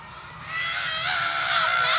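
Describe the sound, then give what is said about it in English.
A sustained, shrill scream of anguish rises and grows louder over about two seconds, harsh and strained, with no words, just raw high-pitched wailing. “Wait a few seconds for the tortured screaming from both parties.”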